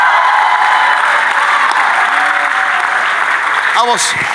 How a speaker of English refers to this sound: Let the redeemer of the Lord come on, clap your hand and shout your heart out.